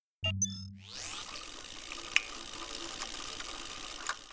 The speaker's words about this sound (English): I averted my eyes to the floor and held out my wrist at the small monitor sitting at the edge of the counter. The monitor beeped and the screen flashed green.